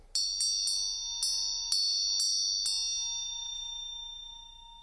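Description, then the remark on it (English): A small bell is struck about seven times in an uneven rhythm during a guided breathing meditation, each bright metallic ding layered over a long, shimmering ring that slowly fades, with no voices. “Each time as the bell resonates, consider the possibility of riding the exhale.”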